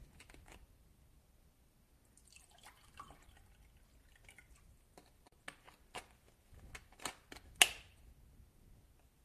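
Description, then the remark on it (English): Coconut water being poured, quietly: a brief soft gush of liquid followed by a scatter of drips and small clicks, with no one speaking. “Gonna get some water, some coconut water.”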